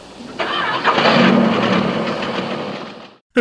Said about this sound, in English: So, Jason agrees to get them to Stony Creek. and he fires up the camper,